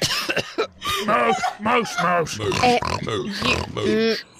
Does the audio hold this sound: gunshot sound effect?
no